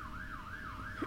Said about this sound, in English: Sorry, I'm just waiting for the ambulance or whatever it is.